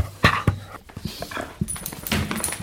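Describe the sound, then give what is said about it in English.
A dog named Ron pants in quick, breathy bursts mixed with wet licking and smacking sounds as he licks a person, with a few sharp transient clicks and shuffles, moderately loud and without talking. “Oh, he's licking you.”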